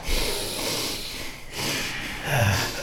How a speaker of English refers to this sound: There we go. I mean, that's a soundtrack. Breathing. Yep. I'm going to tell you. Breathing. It's breathing.